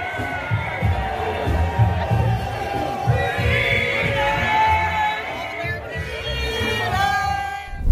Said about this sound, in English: People are chanting Free Tamara Litch. Look at the crowd. 1st of July, Canadian Day, marching for freedom in downtown Ottawa.